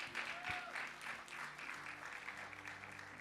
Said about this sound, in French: Est-ce qu'on peut donner une bonne main d'acclamation à l'équipe de louange, s'il vous plaît?